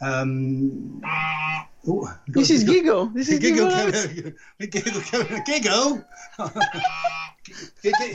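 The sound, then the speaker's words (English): A person imitates a pet goose with a few nasal, honking calls, then carries on in a goofy, squawky voice in loud, animated bursts with brief pauses, in the south west of England. “he's my pet goose.”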